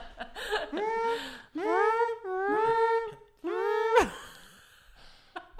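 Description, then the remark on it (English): A person imitates a siren with their voice: several loud, drawn-out wails whose pitch swoops up and down in turn, each ending abruptly, followed by a brief quiet stretch. “That's a fun noise to make. Yeah, it's such a good siren tone.”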